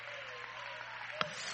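An audience claps together in praise of the Lord in a dense, steady, soft wash of applause, with one sharper clap standing out near the end.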